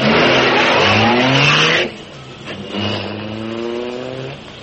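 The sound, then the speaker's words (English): The engine of the Black Beauty car revs hard with rising, whining pitch, drops off briefly, then roars up again as the car speeds away, loud throughout with no voices. “Step on it. Get the Black Beauty out of here.”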